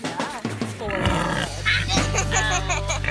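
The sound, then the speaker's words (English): A pig grunts and squeals in a few throaty bursts, over a steady low rumble of background noise. “He's just, that's just a slab of happy pig right there.”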